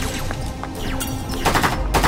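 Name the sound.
gunfire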